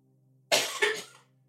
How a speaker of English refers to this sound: I should have muted both mics because you can hear me coughing off mic over there.